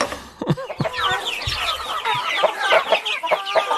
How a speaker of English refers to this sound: All right, let me play you a couple sounds here, or clips, or sound. Yeah. And you tell me whether these chickens are happy or exasperated.